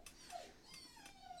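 A puppy whines softly in a few thin, high-pitched whimpers that rise and fall, with no one talking.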